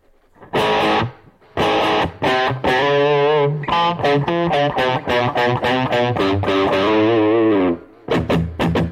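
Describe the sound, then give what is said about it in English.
An electric guitar plays a series of strummed and picked chords drenched in heavy reverb, the notes ringing and washing together with a slightly distorted, effects-laden tone, loud with no voices. “A lot of reverb.”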